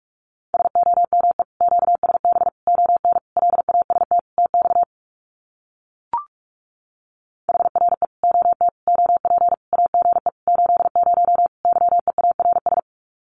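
Very fast Morse code at about 45 words per minute sending common QSO phrases: a steady mid-pitched tone keyed in rapid dots and dashes, in two long runs separated by a few seconds of silence and a single click.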